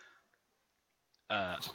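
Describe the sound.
After a quiet stretch, a single loud, sudden sneeze bursts out, a sharp voiced blast with a breathy, hissing edge that cuts off quickly.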